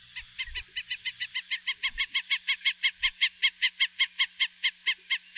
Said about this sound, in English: The Io, or Hawaiian stilt, is an endangered water bird found only in the Hawaiian Islands. They stand about 16 inches tall, have glossy black backs, bright white fronts, and as their name suggests, really long pink legs